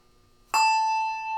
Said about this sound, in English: The first one is the general bell that we play. It's a Schulmerich handbell.